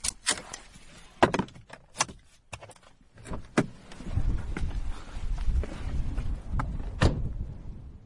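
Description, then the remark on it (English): Footsteps and the sounds of putting things into the boot of a car: scattered sharp clicks, clunks and a jangle of keys, followed by a low, steady outdoor rumble, with no one speaking. “I'm going to make it sound like I'm walking straight to Mark's front door. I won't be. I've got to put some stuff in the boot of my car.”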